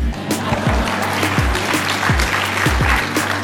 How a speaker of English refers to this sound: Back to the fiscal responsibility. You may applaud that.